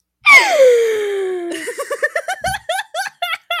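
A loud, drawn-out dramatic gasp with a sliding, falling pitch, close up, immediately followed by a quick series of rhythmic bursts of laughter.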